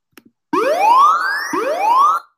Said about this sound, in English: Oh, fuck. That's cool. I don't know where you're going to need a siren, but yeah.